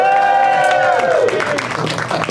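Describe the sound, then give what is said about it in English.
A loud crowd lets out a sustained, rising whoop that breaks into a dense burst of cheering and clapping, filling the whole couple of seconds. “We're going to cut in another crowd doing that and then come back to me going, back once again at Flappers in Burbank!”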